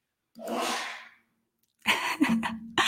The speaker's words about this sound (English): I can hear my husband like sneezing in the background over and over. Do you guys hear that? This is a live show right here, folks.